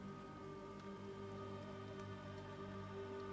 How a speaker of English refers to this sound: Rather rainy out here in Stormford, isn't it? Much prefer it at home.